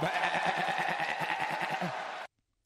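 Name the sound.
goat bleating sound drop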